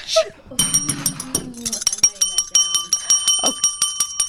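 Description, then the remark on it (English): A hand bell rings rapidly and continuously, its bright metallic tones overlapping and sustaining, fairly loud, with a voice murmuring briefly at the start. “I'm throwing this bell now at the wall.”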